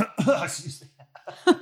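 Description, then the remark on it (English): A person clears their throat into the mic, a rough raspy burst followed by softer vocal rumbles, then a second short, sharp clearing near the end. “Just trying not to clear my throat.”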